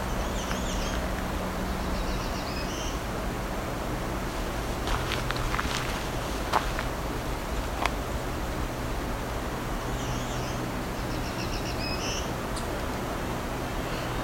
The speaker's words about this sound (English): Oh, there's our presumptive black-throated green. Weird song. He's back singing again. I can't see him.